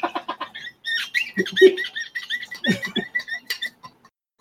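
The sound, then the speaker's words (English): A cat squeaks in a quick run of short, high, chirpy calls, broken by a few lower throaty bursts, continuing for several seconds with no talking. “I hear the squeaking of the cat,”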